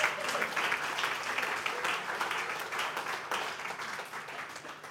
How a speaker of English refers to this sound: And for that, I would like to give glory to God, and I want you to clap hands for yourselves because you love people.